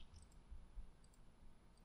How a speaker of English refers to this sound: and maybe even have a producer in here that could do the button pushing and fumbling. So, okay, because that's what half of this show, I'm like, okay, where's this? Where's that? Clicking around.